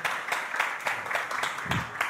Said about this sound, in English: Give them a round of applause for her.